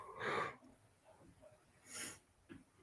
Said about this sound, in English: Sorry, I'm yawning so much.